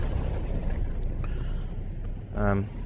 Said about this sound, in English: Ooh, here comes a car. That'll shut me up. Hang on a sec. Let me just get out of the way.